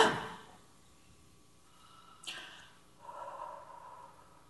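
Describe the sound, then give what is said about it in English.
Deep, audible breathing during a breathing exercise, with no talking: a forceful exhale at the start, a sharp quick inhale a couple of seconds later, then a longer, softer breath drawn out near the end. “Keep breathing.”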